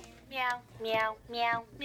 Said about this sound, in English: That is a meowing piano.